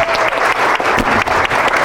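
An audience bursts into steady, loud applause, a dense crackle of many hands clapping at once with no voices standing out.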